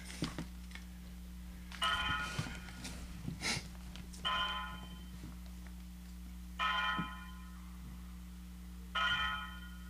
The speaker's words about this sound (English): Yes, my clock is ringing, so this will take a moment.